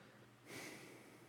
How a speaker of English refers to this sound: Let me clear my throat,